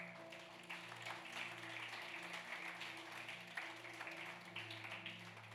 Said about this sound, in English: Let's give a hand of applause to our facilitators.